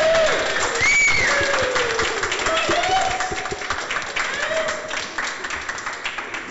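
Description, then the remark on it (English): An audience applauds steadily for the people who taught a course, dense clapping with scattered whoops and cheering voices rising over it before the clapping gradually thins toward the end. “I would like to ask everyone for one more round of applause for Matt and for Henry”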